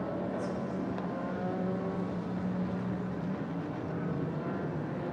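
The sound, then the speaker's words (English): A race car engine roars continuously as the car accelerates out of the pit, its droning pitch climbing slightly as it pulls away, with steady loud rumbling throughout and no voices. “Lawrence Vantour is once again aboard and away. That sounded good.”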